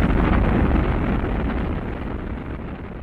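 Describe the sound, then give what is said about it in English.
A deep, continuous roar of Apollo 12's rocket engines at liftoff at 11:22 a.m. Eastern Standard Time, loud and rumbling across the whole range, easing slightly in intensity over a few seconds with no voices. “All engines running. Commit. Liftoff. We have liftoff.”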